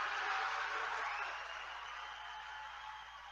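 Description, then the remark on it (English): A crowd applauds Giorgia Meloni at the end of her speech in a dense, sustained wash of clapping that stays steady for a few seconds and then eases off slightly, with no voices standing out. “Thunderous applause at the end.”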